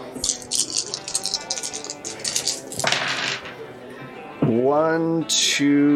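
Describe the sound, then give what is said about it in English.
A handful of dice clatter and rattle in a dense burst of rapid clicks for a few seconds, then a voice breaks in with drawn-out, expressive speech. “I get a lot of dice for this.”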